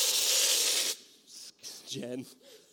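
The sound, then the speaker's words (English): A loud, steady rush of hissing air from an air compressor inflating a balloon lasts about a second, then cuts off, leaving quieter shuffling and a brief voice. “I've got this air compressor hooked up, and I got this balloon.”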